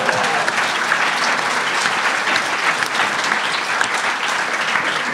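A room full of people claps steadily for several seconds, a dense, even wash of applause that stays loud throughout without any speech over it.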